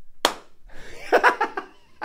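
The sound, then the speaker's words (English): A single sharp, loud hand clap rings out, followed by a few soft, breathy chuckles, then the start of another sharp hit as it cuts off. “Clap.”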